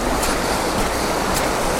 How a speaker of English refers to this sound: It's lots of fallen trees after this wind, but yeah, it's all fresh flowing water from the moors, morning light flooding through the trees.